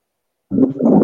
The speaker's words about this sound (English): That's not static. That's my fan. Hold on. We get it out. Shut up. There we go. It's perfect. The fan was turned to the phone. I had to turn it the other way because I cut the AC off today and I just turned it back on.